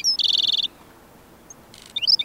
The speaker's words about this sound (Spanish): Sin embargo, algunas aves prosperan en este paisaje abrasador. Aquí, un zacatonero garganta negra canta desde la espina de un matorral.